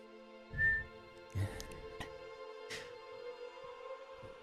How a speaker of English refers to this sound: Whistled a little bit there. I need to do that.